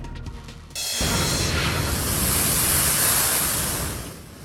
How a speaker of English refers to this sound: Along the American East Coast, ferocious waves are wreaking havoc in Maine. Heavy winds and rain have triggered a record high tide, flooding roads and homes in coastal communities, and even sweeping away centuries-old fishing shacks.